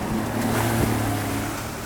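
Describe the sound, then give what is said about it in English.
A boat engine drones steadily as the boat rounds a point off Lahaina, its low hum running under the wash and splash of ocean water and a touch of wind, with no one speaking. “The boat rounds a point, and there's Lahaina, a big black and gray scar where buildings once stood.”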